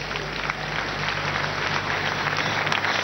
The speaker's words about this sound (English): Clap for Jesus.